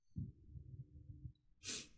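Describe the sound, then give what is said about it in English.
Someone imitates sniffing: a stretch of low, rough nasal breathing followed by one short, sharp, hissy sniff near the end. No words are spoken. “Sniff, sniff.”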